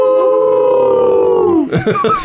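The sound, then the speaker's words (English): Several people let out a long, loud group howl like wolves, holding a steady note that slides downward before breaking into scattered laughter and chatter. “We shall howl in her honor.”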